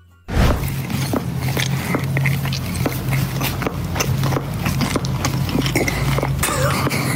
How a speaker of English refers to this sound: But this is his clicking jaw.